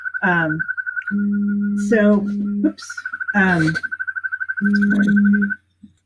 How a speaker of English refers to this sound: So I think I was trying to identify that bird call. No, actually that was it wasn't a bird. That was it's a Yosemite toad.